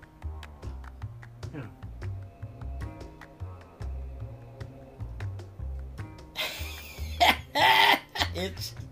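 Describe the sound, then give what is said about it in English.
Over a steady, thumping low beat, a big, harsh cough bursts out near the end in a couple of loud, rough blasts that briefly drown out everything else. “Did you hear that big massive cough?”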